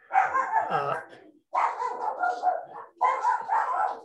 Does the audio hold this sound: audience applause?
no